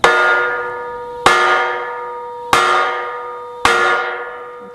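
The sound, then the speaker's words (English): A loud, resonant bell is struck four times at a slow, even pace by a person wearing leather gloves, as a demonstration of striking, each clang ringing out with a long metallic decay before the next strike. No voices are present. “So that's the idea behind the bells. It's not just a little dingling.”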